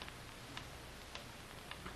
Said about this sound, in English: Listen to that ticking. That's fate counting what may be the last minute of our lives. As long as you can hear the ticking, you don't have to worry.